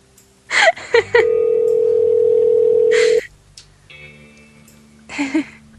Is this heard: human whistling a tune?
no